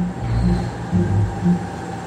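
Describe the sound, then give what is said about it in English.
A small driverless mail train of waist-high carts, with no riders, chugs past in a small tunnel with a steady low rumble, its engine pulsing in regular surges about every half second. No voices. “And then a train chugs into view.”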